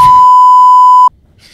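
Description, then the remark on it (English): A single loud, steady censor bleep lasting about a second, covering spoken names, cutting off abruptly into faint background noise. “Do you think I should beep out all these names?”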